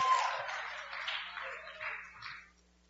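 Audience applause: a dense, steady wash of many hands clapping for a couple of seconds, holding fairly even before tapering off at the end. No one speaks over it.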